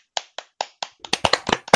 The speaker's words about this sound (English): Let's go. Let's clap.